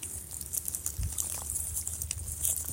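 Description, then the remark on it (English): Gentle lake water laps and splashes at the shore of the North Shore of the Kichigami in a steady, irregular wash, with soft trickling and a low rumble of waves underneath; no voices are heard. “Greetings from the singing North Shore of the Kichigami. Join me. Join the water song.”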